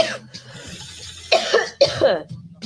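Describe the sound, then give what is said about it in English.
A person coughs twice in quick succession, harsh, with a fainter throaty rasp before and after; no words are spoken. “Not because I can't smoke, but because I have to cough.”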